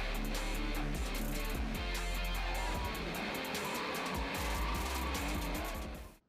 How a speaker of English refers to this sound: One hand on the wheel. Mind you, that's an expensive car. Doesn't touch a cone. Drifted in and out of several of the cones in a second here.